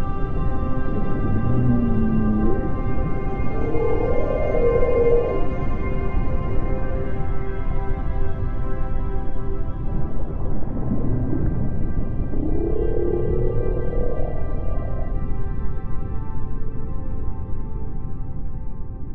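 Whale calls recorded at Ubatuba: long, low moans that slide up and down in pitch, a few drawn-out cries spread over a steady underwater hiss and hum, with no one speaking.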